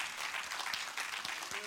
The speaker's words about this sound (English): So let's applaud the Lord again as we pick up the tithes and the offering.